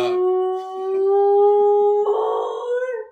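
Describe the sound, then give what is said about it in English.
A dog howls in one long, sustained, tonal wail that holds steady before turning rougher and more strained near the end, fairly loud with no talking. “And over my shoulder, their dog is howling at times.”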